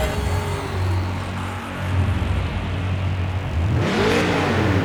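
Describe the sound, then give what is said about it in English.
A car engine idles with a steady low rumble, then revs up sharply near the end, the pitch sweeping upward in a loud roar. “Start your engine.”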